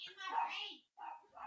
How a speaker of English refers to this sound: Hold on a sec. I don't know what the hell my dog is doing. Hey, shut that dog up!